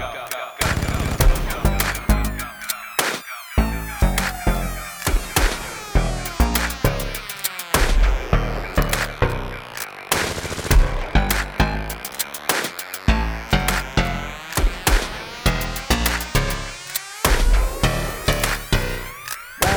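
A loud, dense rap music track plays continuously, driven by harsh, rapid percussive bursts like clattering gunfire and glitchy electronic noise, with shifting tones sweeping through the mix.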